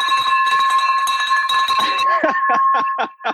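A bell rings out loud and close, its bright sustained tone hanging for about two seconds over excited voices, then giving way to rhythmic, chant-like bursts of sound.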